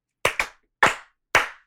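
Two people clap their hands to mark the start of a recording: a quick pair of crisp smacks, then two more single claps at slower, even intervals, each bright and snappy with a short fading tail, with no talking.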